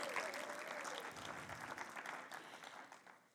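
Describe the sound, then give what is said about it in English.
A crowd claps steadily in a dense, continuous wash of applause with a few cheers mixed in for a man called up to share a testimony, holding strong for a few seconds before tapering off toward the end. “Let's give him a big cheer.”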